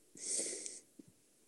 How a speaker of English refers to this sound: Oh, stop breathing into your mic so much, and I'll be happy to tell you.